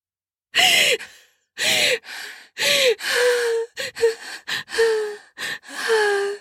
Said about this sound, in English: I gasp as I come down off the giant orgasm.